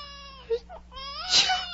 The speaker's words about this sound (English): Oh, not more pepper. The baby's sneezing and howling already, poor little thing.